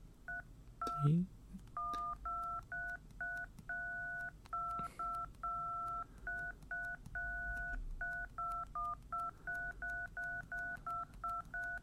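A steady run of touch-tone phone keypad beeps, dozens of short dual-pitched tones pressed in a rhythmic pattern that picks out a simple tune. Clear, with a brief thump near the start.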